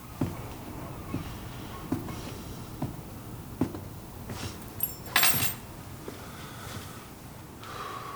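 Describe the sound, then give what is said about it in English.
A back door is rattled and yanked at: a series of dull knocks and clunks about once a second, then a sharp metallic rattle and scrape before it settles, with no voices. “Back door I'm gonna rip you out the fucking wall!”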